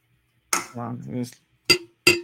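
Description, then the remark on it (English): A brief burst of voice, then two sharp glass clinks close together, each ringing briefly, like drinking glasses tapped in a toast. “Cheers to wrestling, cheers. Trying different things, you know, absolutely. Wrestling being a buffet. Clink.”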